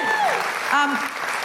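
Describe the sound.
Steady, dense audience applause at a live tour show in Newcastle fills the whole short stretch, many hands clapping at once, with a brief voice or cheer rising briefly above the clatter.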